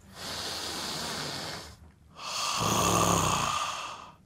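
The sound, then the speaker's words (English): Two slow, deep belly breaths: a long airy inhale, a brief pause, then a fuller, louder exhale with a soft rumbling low end. No talking. “The power of belly breathing.”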